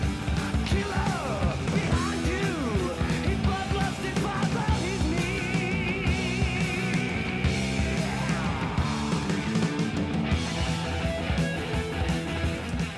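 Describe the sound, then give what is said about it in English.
A loud, driving, bass-heavy heavy metal song with a galloping rhythm section, as two lead guitars play a soaring harmonized solo with bends and vibrato, without vocals. “I love the harmony solos. Talk about bass-driven band.”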